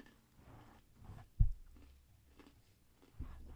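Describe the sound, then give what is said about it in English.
Crisp crunching and chewing on fried pork rinds (chicharrones), with a few sharp bites scattered over a few seconds and no talking. “crunching on something. Estamos comiendo chicharrones”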